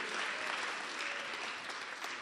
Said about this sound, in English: I'm happy you are clapping. If it's for the same reason, I'll be blessed.